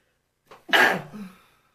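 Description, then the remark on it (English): A single sneeze: a short breathy intake, then a sharp, loud burst that trails off into a brief voiced tail. No one speaks. “Bless you.”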